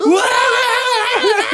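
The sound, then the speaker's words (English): A person in a film scene screams loudly, one sustained high-pitched shriek lasting over a second with a wavering pitch, heard on its own with no talking. “Like how you would picture when someone's screaming.”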